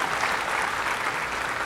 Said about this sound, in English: Part of it was going to be in response to Roe versus Wade being overturned, and we still praise God for that. But in that, yes, please give God a hand clap of praise for that.